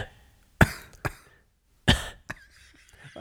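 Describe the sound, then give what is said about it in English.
A person gives small, dry coughs: two pairs of short, sharp bursts, each strong hack followed by a lighter one, separated by brief silence. “And for some reason, I kept wanting to cough.”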